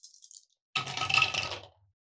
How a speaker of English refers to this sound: I'm using this dice roller / can holder mug that our friend 3D printed for us.